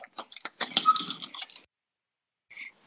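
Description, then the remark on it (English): Metallic clicking and scraping of a key working into a door lock, a quick cluster of sharp ticks and jingles, followed after a pause by one brief clack. “Okay, I hear a key going into a door.”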